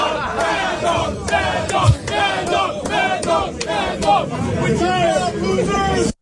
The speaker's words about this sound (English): But the Diamondbacks players were chanting Mad Dog after beating the Phillies. It was unbelievable.